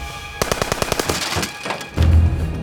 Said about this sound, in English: Suddenly, bullets began crashing into the cars, shattering the windows and embedding into the metal sides. Judy Darling turned around and saw a gunman with an AK-47 walking along the line of cars, wildly firing.